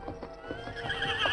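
A horse with a strained leg muscle hobbles to the side of its fallen rider, hooves clopping slowly and unevenly on hard ground, a halting, limping rhythm of about seven steps, with a soft whinny rising at the end.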